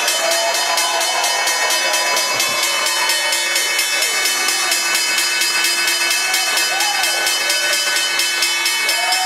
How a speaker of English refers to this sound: And there they are, the opening bells and the CNBC real-time exchange, which you can see right there on your screen.